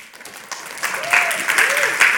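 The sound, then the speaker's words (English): A church audience breaks into applause for a member who has graduated as a Tennessee state trooper, the clapping swelling from scattered hands into a dense, steady roar, with a few voices calling out over it. “Wait a minute. Y'all clapping.”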